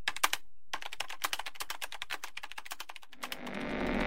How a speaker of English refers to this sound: I sat down and began to type, my fingers flying over the keys as if possessed.